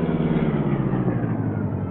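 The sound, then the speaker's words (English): The engine of a gleaming black car, the Black Beauty, rumbles steadily, a low, even motor drone that holds at a constant level as the car rolls to a halt in the alley behind Kane's apartment house, with no voices. “Soon the gleaming black car was stopping in the alley behind Kane's apartment house.”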